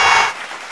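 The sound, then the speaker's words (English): A short burst of crowd applause, dense and crackling, for the inductees into the 2020 Big Boom Radio Hall of Fame, fading away within a moment into a quieter wash of noise. No one speaks. “No, I'm like cheering here, man. I'm joining the crowd.”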